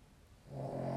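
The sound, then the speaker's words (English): A dog's snore rises out of near-silence halfway through, a single low, buzzing, drawn-out breath that holds steady to the end. It is soft, with no talking. “And I'm sure you can hear my dog snoring as always.”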